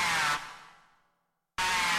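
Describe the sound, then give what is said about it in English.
A harsh, hissing snarl of the Eastern Fighting Turtle blasts out loudly, trails away into a brief silence, then starts again just as abruptly and forcefully, with no voices. “The aggressive snarl of the Eastern Fighting Turtle can carry for up to 5 miles across still water.”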